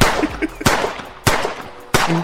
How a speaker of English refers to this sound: That was a lot of gunshots. I didn't realize that many.